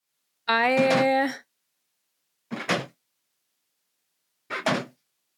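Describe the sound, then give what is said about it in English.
Pippin the cat bangs on an automatic pet feeder to get a morsel of food. After a brief tonal, voice-like sound, two loud double-knock clatters come about two seconds apart, with silence between them. “Pippin is attacking the automatic feeder to get like one morsel. It's like honestly pathetic, but also very loud.”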